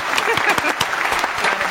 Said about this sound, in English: Applause.